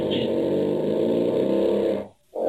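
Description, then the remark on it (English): A long, loud fart from a young girl having dinner with her parents in Staffordshire, England, with a buzzy, rumbling low tone, lasts about two seconds, stops briefly, then starts up again. It is prominent, with no talking. “it's the sound of a young girl having dinner with her parents in Staffordshire, England, and she's farting”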